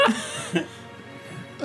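A hard human sneeze: a sharp, breathy burst at the start, then a shorter gasping burst and another brief one at the end. Moderately loud, with no talking.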